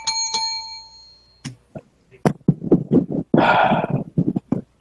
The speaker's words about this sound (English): All right, it's 9:04. 9:09, it's going to be over with this round, so I'm going to ring the bell.